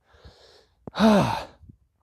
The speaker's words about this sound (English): From Sedona, Arizona. I'm out for a hike. If you hear heavy breathing, that is why.